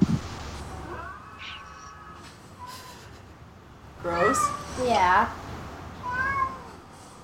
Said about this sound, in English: Oh, kitty. I know. Kitty loves you.